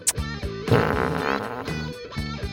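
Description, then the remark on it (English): A rapid string of buzzy, flapping fart sound effects, one after another with short gaps, some gliding in pitch, loud with no talking, played as a fart sequence started with Siri. “And she always says it, and Randy plays the same sequence of farts.”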